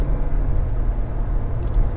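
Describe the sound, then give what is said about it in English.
A steady, low rumble of road traffic in a 55 mph speed limit zone, with a bunch of cars driving by in a continuous wash of engine and tyre noise and no distinct gaps or voices. “Dude's letting me go because there's a bunch of cars coming this way.”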